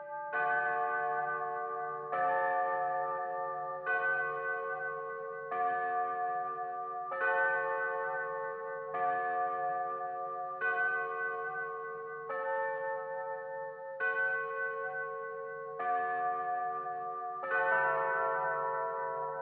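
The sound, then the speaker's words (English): Church tower bells, rung by a bell ringer pulling ropes in the bell tower, play a composition in a steady sequence: about ten rich, resonant strikes roughly two seconds apart, each tone ringing on and overlapping the next, with no voices present. “And so as we were up in the bell tower, the bell ringer actually played the composition while Max and I were standing up among the, you know, pulling ropes and stuff with the bells ringing above our heads.”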